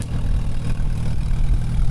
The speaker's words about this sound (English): And there's a familiar sound, the sound of heavy machinery purring along the streets of Dickinson, North Dakota. Children waiting for candy to be thrown out, and it was a very successful parade as part of Roughrider Days.